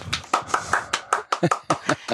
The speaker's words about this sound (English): Well, I hope you don't mind. I'm going to hand clap.